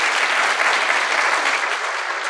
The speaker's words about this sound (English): Of course, I want to thank the Richard Nixon Library and Museum for hosting us today. Everyone, a round of applause for the library.